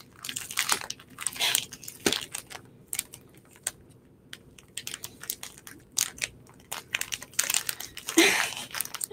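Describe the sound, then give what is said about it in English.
Crinkly plastic bag being tugged and pulled at by hand as someone tries to open it, a continuous run of sharp rustling and crackling bursts with no voices. “Someone want to help me open this fucking bag right now?”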